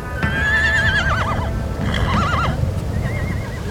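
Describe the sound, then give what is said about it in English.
Horses whinny loudly several times, their wavering neighs rising and falling, over a steady low rumble of hooves shuffling and clopping on the ground, as the horses wait and spin around before heading into a buffalo herd. “Bet these horses are raring to go too.”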